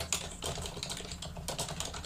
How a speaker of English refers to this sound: Will you stop typing? I'm taking notes.